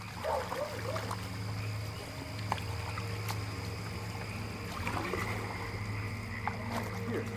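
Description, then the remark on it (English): Oars paddle through the water of the Williamson River, on tribal land, at a slow, irregular pace amid an outdoor soundscape of frogs croaking, a steady low hum and soft trickling in the background. “The soundtrack to his childhood on tribal land was oars paddling on the Williamson River, the bark of his dog, and at night, the sounds of his grandma praying.”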